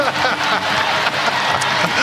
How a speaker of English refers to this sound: And the crowd is jacked. The Coyote's going crazy.